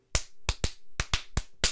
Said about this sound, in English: Someone was at the door and knocking in a really weird pattern that almost sounded like clapping. They must have had odd hands.